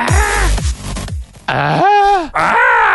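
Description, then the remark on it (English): Politician Howard Dean's famous scream in a recorded ad: a man lets out a loud, raw scream in several strained bursts, his voice rising and falling in pitch, the longest yell arching high in the middle with no other talk around it. “Just that scream,”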